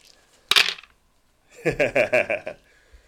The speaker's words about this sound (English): Well, with that said, I'm going to roll some dice, and then we're going to make some predictions. So I've got my 46 and 1d4 here. Well, this should make a very satisfying thud.